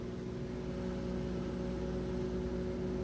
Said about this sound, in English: Bagel's so ready. Let's run that microwave. How does it work? And that hum.